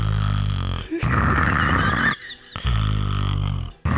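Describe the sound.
A voice imitates a person's loud, rasping snoring, three long harsh snores separated by brief breathy pauses, with no break in intensity between them.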